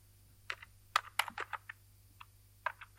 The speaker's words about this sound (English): Oh, are those cherry brown or... Cherry reds? Cherry blacks? Reds. I don't know. Don't know. What they are annoying. I hate clacking keyboards. This person's a really bad typist as well. And they seem to be in a very echoey room.